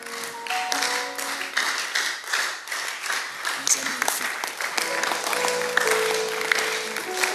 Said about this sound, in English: Oh, the way you are clapping, I'm not sure you are in church.